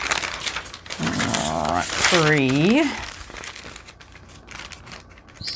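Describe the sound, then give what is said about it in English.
Paper sheets rustle and crinkle as they are shuffled, counted and sorted by hand, a steady papery texture running under a person counting aloud. “Okay, so maybe I'll use four sheets.”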